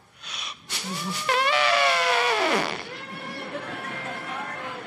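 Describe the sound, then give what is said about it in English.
A voice imitates an elephant trumpeting: one loud, brassy, wavering blare lasting about two seconds, sliding downward in pitch as it fades out. “I can't sleep with an elephant going like that.”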